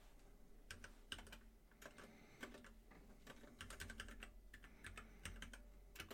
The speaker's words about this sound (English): Yes, I'm typing.